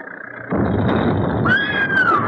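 A shrill, sustained scream, coming from up in the wall, cuts in partway through over a loud, steady rumbling roar, holding a high pitch for about a second before sliding slightly downward.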